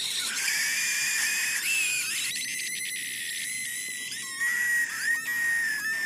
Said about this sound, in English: Well, now you do. It's a Coca-Cola rape scream. Horrible stuff. Just conjures up so much horrific imagery.